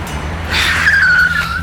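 A car engine rumbles low, then tires let out a loud, sustained screech that slowly drops in pitch as the vehicle skids. No one speaks.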